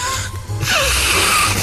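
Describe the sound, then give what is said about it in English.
A weak, half-hearted nose blow: after a brief pause, a steady airy rush of breath through the nostrils lasts about a second, with no one speaking. “Oh, that's a real half-hearted blow there.”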